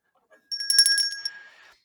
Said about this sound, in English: Bell, please.